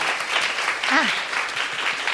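A crowd applauds steadily for about two seconds, a dense, even patter of many hands clapping, with a brief voice rising faintly through the middle of it.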